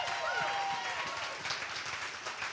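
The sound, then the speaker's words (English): An audience claps together in a steady, dense wash of applause, with a brief high tonal sound rising above the clapping near the start, clapping to give praise to God during a sermon. “Oh, come on, we're going to clap.”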